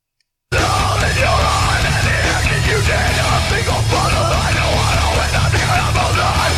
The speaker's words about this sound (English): He really used to scream this much? Huh? He really used to scream this much? I had no idea.